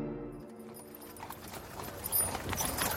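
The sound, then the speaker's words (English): Horse hooves clip-clop steadily on a hard street as a horse-drawn carriage rolls along Water Street in Manhattan on a morning in 1850, a heavy trunk being loaded aboard; the rhythmic clatter grows slightly louder, with no voices. “You hoist a heavy trunk into a horse-drawn carriage and wipe the sweat from your brow.”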